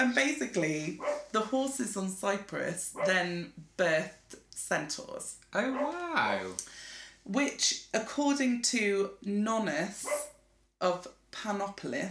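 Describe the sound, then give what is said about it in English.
A dog, Lolly (also called Lollykins), barks in short bursts, mixed in with steady conversation between people talking over it. “No, she's barking right somewhere else.”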